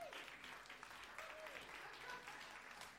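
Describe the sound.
A crowd applauds the gold-prize winner of a cake contest, steadily: a dense wash of clapping hands that holds at an even loudness throughout, with faint voices and a brief whistle-like tone rising above it.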